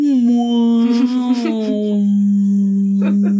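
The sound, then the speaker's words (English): A voice imitates a whale call with one long, sustained moaning hum that rises slightly, then holds a steady low pitch, with a few breathy puffs mixed in. “I think so it's we like, need a whale sound to accompany that.”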